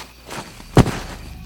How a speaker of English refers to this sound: Footsteps approach, the sound of a heavy-set man falling to his ass.